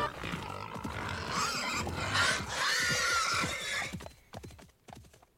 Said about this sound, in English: We see a blur as something large and pig-shaped bursts from the leaves. The boys are thrown into chaos. Adamant shrieks. Morag plunges after it, and Quinn is almost thrown from his horse. Boar!